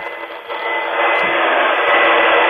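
A vacuum cleaner runs in a steady, loud whooshing drone, sounding thin and tinny as if heard over a telephone line, swelling slightly louder with no one speaking.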